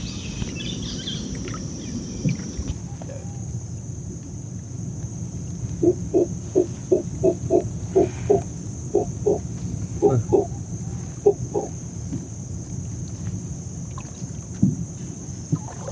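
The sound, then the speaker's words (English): A person imitates a howler monkey with a rhythmic run of short, hoarse, grunting calls, repeated in quick bursts, over the steady low drone of a boat motor and water. “is imitating the sound of a howler monkey.”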